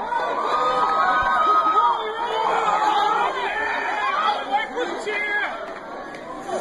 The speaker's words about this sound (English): I remember this cheer. I know. That guy was really excited. I know. He's all right. Wait for it. Here we go. 2, 3. All One. Xbox One. That's us. All Xbox One.